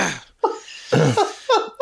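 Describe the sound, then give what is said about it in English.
A short, throaty belch is followed by a few bursts of voiced laughter, loud and close together within under two seconds. “… is a pig and decided to belch in the middle of that”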